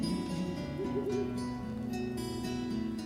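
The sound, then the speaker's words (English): Low, wavering hoots like an owl's, drawn out, sounding over a steady breathy hiss like cold wind; no one speaks. “Ah, yes, the sound of an owl hooting in the background, the cold wind sweeping through the room, and we are here in Australia and it's stinking hot.”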